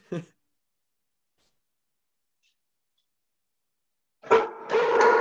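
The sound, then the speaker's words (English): After a brief faint sound and a long stretch of quiet, a puppy lets out two loud barks in quick succession right at the end. “Dogs don't appreciate podcasts.”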